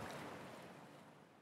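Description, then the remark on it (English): Sea waves crash and wash against the walls of houses in a coastal city, a loud, continuous roar of churning water that fades slightly over a moment, with no voices present. “As soon as I got out of the car, I could smell the sea salt and I could hear the waves crashing against the walls of the houses.”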